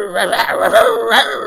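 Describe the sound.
A human voice imitates a small dog's yappy barking, with a few quick, high-pitched yips in a loose rhythm, close and fairly loud.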